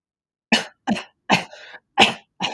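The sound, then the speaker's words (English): A series of five or six harsh coughs in quick succession, with a brief raspy wheeze between two of them, fairly loud and with no talking. “Yeah, coughing already.”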